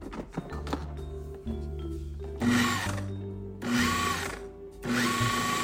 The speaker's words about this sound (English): And I'm gonna throw the lid on this food processor and give it a pulse just to incorporate the dry ingredients.